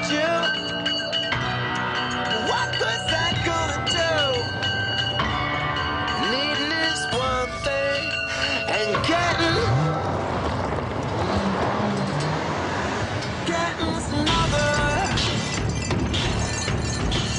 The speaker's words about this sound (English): And the whole video is basically this car journey around this course with things attached to it that hit things in time. It's absolutely amazing piece of construction.